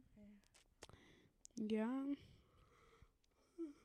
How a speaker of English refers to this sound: I think she's over here yawning, y'all.